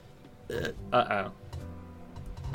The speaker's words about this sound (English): I have to fart.